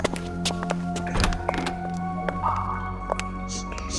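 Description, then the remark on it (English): Several dull, heavy door thuds land at uneven intervals over a steady low mechanical hum, with one especially solid knock near the middle and fainter knocks scattered around it. “Over here, door number one.”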